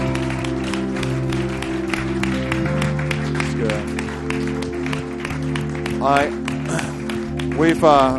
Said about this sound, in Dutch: Come on, won't we give Jesus a great. Laten we Jezus een groot applaus geven.